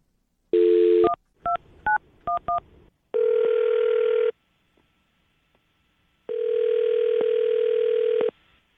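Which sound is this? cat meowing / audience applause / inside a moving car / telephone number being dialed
telephone number being dialed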